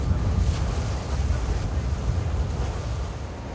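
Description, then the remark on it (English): A boat once used to ferry prisoners to and from Robben Island moves across open water on a short journey from Cape Town, with a steady rush of waves and wind buffeting the microphone, a continuous loud low rumble with no voices. “We're on a boat that was once used to ferry prisoners to and from the notorious Robben Island.”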